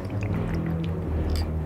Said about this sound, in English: This is Old Monk Rum, a 7-year blended dark rum from India, coming in at $37. Let's make poor decisions. Perfect pour.